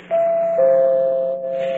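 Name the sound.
front doorbell ringing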